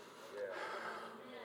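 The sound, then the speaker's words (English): A person demonstrates a boy's breathing by drawing one long, deep breath, a steady breathy rush lasting over a second with no talking. “And this is what he did. Mama, I'm breathing.”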